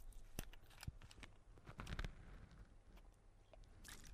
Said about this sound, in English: Excuse me, just a quick sip.